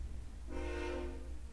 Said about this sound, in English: there's our wonderful train. Let me let that go through. Yeah, no, hang on. That's the joy. I love it.